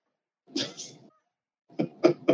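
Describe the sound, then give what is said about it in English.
A cat hisses at another cat: one long, breathy hiss, a short pause, then three quick, sharp spitting bursts in a row, with no talking. “They hate each other. Stop hissing.”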